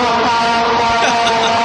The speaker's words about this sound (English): That was like a swarm of bees.